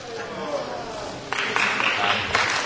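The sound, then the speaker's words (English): A low murmur of many voices groaning in a large legislative chamber as a member from Arizona rises with 60 colleagues to object to counting Arizona's electoral ballots. About halfway through comes a burst of scattered clapping that continues unevenly beneath the crowd noise. “You hear them groan? Some groan, some clap.”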